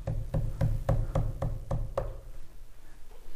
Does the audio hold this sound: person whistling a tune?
no